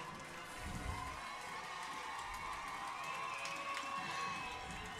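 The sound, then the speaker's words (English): The Almont student section cheers and shouts continuously in a frenzy near the end of a football game, a dense wash of excited voices with high whoops and yells rising over a steady roar throughout. “Almont student section in a frenzy.”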